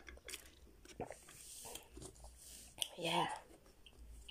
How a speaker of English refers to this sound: And let me just take a sip of my Pepsi.